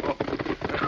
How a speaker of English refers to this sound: Not a rider, Tonto. Just a horse.